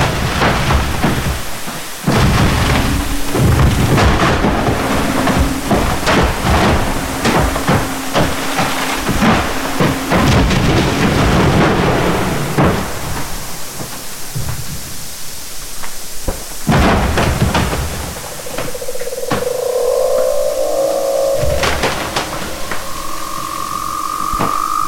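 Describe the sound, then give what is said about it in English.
Refreezing ice booms, thuds and cracks from the mechanics within the ice, with no surface sound, in a dense, irregular barrage of loud percussive hits, fading briefly before more sharp cracks return alongside faint, sustained whistling tones. No voices. “So that this wonderful percussive chorus of booms and thuds and cracking as this was happening around me in the sort of sea of sound, when everything else was silent.”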